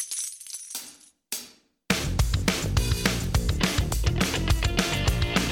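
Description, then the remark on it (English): Coins (doubloons and pieces of eight) pour into a treasure chest in two bright, jangling bursts of metallic clinks, then loud rhythmic music abruptly takes over for the rest. “It's the sound of treasure pouring into a treasure chest.”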